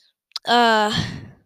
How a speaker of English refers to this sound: Again, I'm yawning, but it's 11:40.